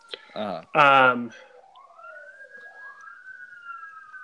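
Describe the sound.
A brief burst of voices, then an emergency vehicle siren wails steadily outside, its pitch sweeping up and down in long cycles, moderately faint as it passes.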